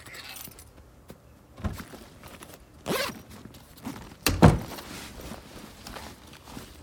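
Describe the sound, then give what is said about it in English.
Keys jangle in a few short metallic bursts as they are handed over, with soft rustling and handling noises between them; no one speaks. “She needs your keys. Of course she does. I'll take them to her.”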